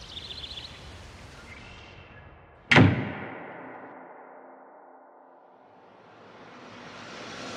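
A door shuts with one sharp, solid click-thud that rings out and fades slowly, set against a soft, steady background hiss with no voices.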